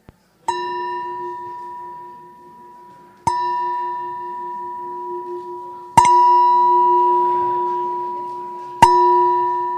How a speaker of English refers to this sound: I'll ring the bell in maybe about 6-7 minutes.